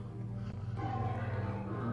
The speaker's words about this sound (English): You'll never stop the lion from roaring. He's trying to intimidate you.